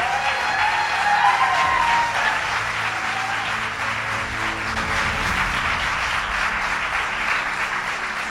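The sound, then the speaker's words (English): Sustained applause from a large crowd for legislators who passed a law, a dense steady wash of clapping with a few whistles and cheers rising near the start, continuing loudly throughout. “And let's give a round of applause to all the legislators who finally got it done.”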